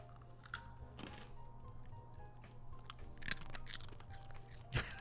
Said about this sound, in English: You guys want to hear the crunching of a happy dog?